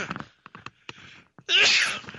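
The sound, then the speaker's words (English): A single loud sneeze: a few short catching breaths build up, then a sudden forceful burst of air, with no talking. “sorry, I'm about to sneeze.”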